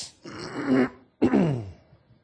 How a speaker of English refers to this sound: I have not missed coughing, however.